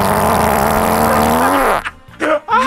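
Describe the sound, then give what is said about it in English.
A long, loud, deep fart rumbles continuously for nearly two seconds with a buzzing, slightly falling pitch, followed by a few brief bursts of voices reacting. “And this one was called The Deep Ripper.”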